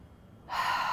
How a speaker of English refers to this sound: Really feel it. And just take a second. And breathe in.